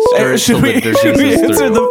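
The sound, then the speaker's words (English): A telephone rings with a loud, tonal ringtone, a short run of bright melodic notes that repeats without a break for a couple of seconds. “should we answer the phone?”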